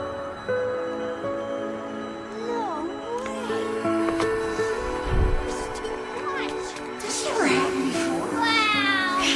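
A cat meows several times in short, wavering cries, some high and drawn out, over a steady droning musical background with a low rumble midway.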